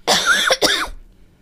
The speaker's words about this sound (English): I just covered the wrong microphone when I coughed.